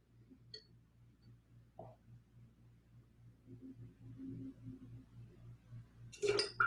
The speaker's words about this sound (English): Well, in that case, I'm just going to drink some water here and hang out for a second.